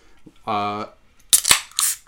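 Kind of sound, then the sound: food or drink, beer being opened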